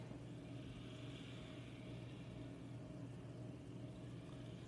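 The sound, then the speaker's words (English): A video game race car engine, firing up for a restart, drones steadily at a high pitch, holding a constant roar throughout with a faint whirring hiss on top and no talking. “And firing up for the restart.”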